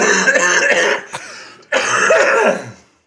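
Two loud, harsh coughs, each a rough burst lasting about a second, separated by a brief pause, with no talking around them.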